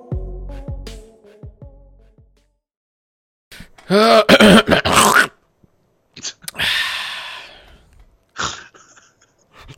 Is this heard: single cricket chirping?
no